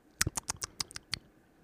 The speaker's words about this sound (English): Let me take a sip of coffee. Oh, this is old coffee.